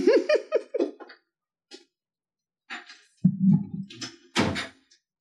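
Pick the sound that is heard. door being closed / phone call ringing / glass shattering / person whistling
door being closed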